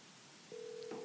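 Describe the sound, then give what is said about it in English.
A phone call to Gerald Swindle being placed from the LBL Bar and Grill: after a short quiet stretch, a steady electronic telephone tone starts midway and holds to the end, with a brief click-like blip near the close. No one speaks. “We're going to see if we can get him on the phone right now for a little LBL.”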